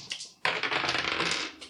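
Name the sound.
dice being rolled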